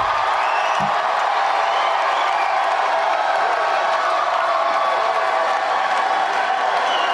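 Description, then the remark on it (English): A large political rally crowd cheering a 74-year-old candidate roars steadily with cheering and applause, a dense, continuous wash of voices and clapping that holds at a loud, even level throughout with no clear speech. “A grumpy 74-year-old man is like rock star crowd right now.”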